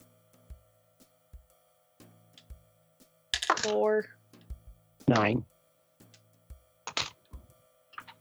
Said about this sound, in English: All right, everybody roll me a d10.